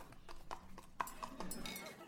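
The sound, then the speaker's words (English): Horse hooves clip-clopping in a quick, uneven series of hollow knocks, moderately loud, with a soft background murmur underneath. “Kind of hard to pour. Due to being a horse.”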